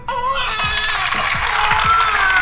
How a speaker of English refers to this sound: If you make me laugh, everybody's gonna clap for you. Where is the clapping button?